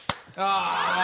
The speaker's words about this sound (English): can we just share a crisp, absolutely synchronized high five